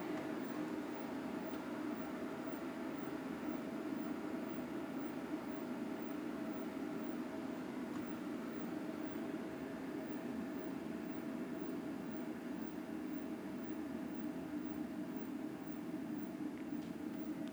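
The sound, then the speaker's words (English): An electric kettle heats water close to the boil, giving off a steady rumbling hiss that holds at an even level throughout, with no voices. “Water's about to boil.”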